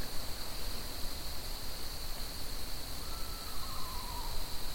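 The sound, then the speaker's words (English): A faint owl call, a single wavering note sliding downward, rises briefly out of a steady high-pitched insect drone and constant hiss. No one speaks. “That's an owl, I think.”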